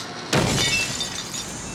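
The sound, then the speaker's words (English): A household door is blown open during a late-night government census raid, with a sudden loud bang followed by about a second and a half of crackling, shattering debris that slowly settles. No voices are heard. “Blow the door. Blowing the door.”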